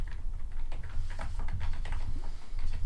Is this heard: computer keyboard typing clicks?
yes